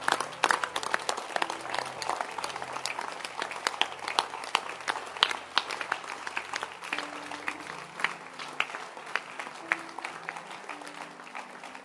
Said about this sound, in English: And I want to ask us all to clap for the Holy Spirit who has made me to a choleric.